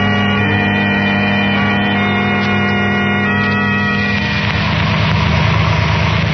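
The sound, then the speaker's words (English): A car engine idles with a steady, droning hum, then shifts to a rougher, throatier rumble near the end as the car, carrying Herbert and a girl, pulls over to the curb. No voices. “The car with Herbert and the girl is just pulling over to the curb, Dr.”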